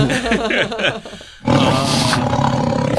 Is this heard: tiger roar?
yes